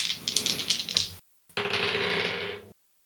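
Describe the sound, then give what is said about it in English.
Dice clatter and rattle across a hard table surface in two quick bursts, a rolling tumble, a brief pause, then another sustained clatter before settling, rolled for a sword attack in a tabletop game. Fairly loud, no talking. “Let's go dice that roll higher numbers than a 4.”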